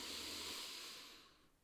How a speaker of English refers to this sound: Breathing in through the nose, raising the shoulders at the same time, breathing out, lowering the shoulders.